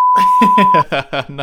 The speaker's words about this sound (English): And going into this, there's the timer, added time, going in.